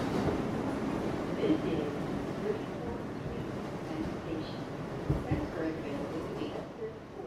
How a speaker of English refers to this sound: Once I reached the city, I boarded the subway